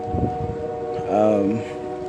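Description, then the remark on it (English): A train horn sounds in the background, a sustained multi-tone blast with steady harmonic bands, heard outdoors on a walk around the 9 o'clock hour over light wind and faint rustling, with a brief murmur of voice at the start. “there's that train right on cue.”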